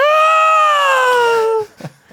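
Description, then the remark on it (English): A person vocally imitates the scream of a creature falling: one loud, sustained, high-pitched wail that slowly drops in pitch over about a second and a half, then cuts off, followed by a couple of faint breathy sounds. “and then that creature that you talked about screams on the way down. But do you know what I mean? I still cry. Yeah. How does it scream?”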